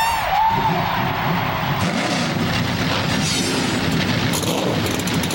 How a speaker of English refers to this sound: Engines have fired on pit road.